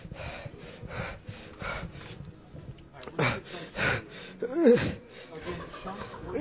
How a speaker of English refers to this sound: breathing like he ran a marathon.